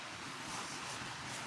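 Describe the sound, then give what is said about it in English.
A steady, continuous rush of flowing river water at a riverbank grown with docks and cow parsley, soft, with a breathy wind-like hiss running through it and no voices. “I've reached the river. You may be able to hear it.”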